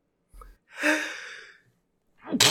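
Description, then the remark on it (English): A loud sneeze bursts out as a breathy rush that trails off, and a second sharp sneeze follows after a short inhale near the end. “I'm gonna be sneezing for the next 10 minutes now.”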